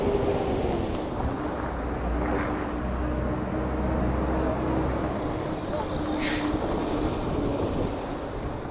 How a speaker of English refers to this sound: let this buses pass. It's loud.